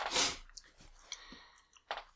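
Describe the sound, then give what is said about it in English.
Wet chewing with crisp crunches, a loud bite at the start and another near the end, with softer irregular mouth clicks between. No one speaks. “One moment to finish chewing this one.”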